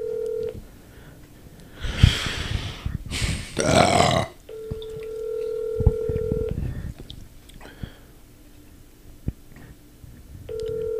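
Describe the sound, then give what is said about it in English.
A phone call rings out on the line: a steady electronic ringback tone sounds for about two seconds, pauses, then returns, with loud rough noisy bursts, like a burp, in between. “Call and be like, you got extra waiters, bro? Put him on the spot.”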